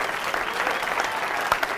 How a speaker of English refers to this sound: Let's clap it up for this man.